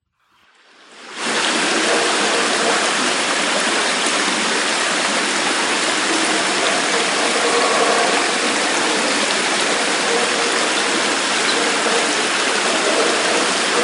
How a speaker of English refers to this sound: Before we move on, let's listen to some recordings of the water and sounds of Palenque.